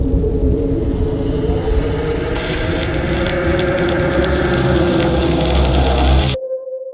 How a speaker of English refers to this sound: Blizzard conditions mean that wind is blowing at least 35 miles an hour or higher, and visibility is reduced to less than a quarter mile for at least 3 hours.